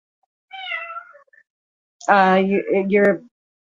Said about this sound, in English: It's nice to hear you with your cats again. Yeah, my cats are always with me. Now they're angry at each other.